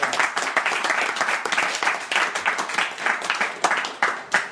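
A crowd applauds steadily for a guest's good questions, many hands clapping in a dense, crackling wash that stays fairly loud throughout with no talking over it.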